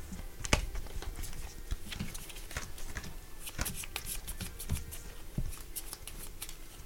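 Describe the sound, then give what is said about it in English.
A hand of game cards being shuffled at the start of a turn in a card game, before drawing three and picking one: a steady run of crisp, papery flicks and soft snaps lasting several seconds, fairly quiet, with no one talking. “All right, so we are back to the beginning where you shuffle your hand, draw 3, pick 1.”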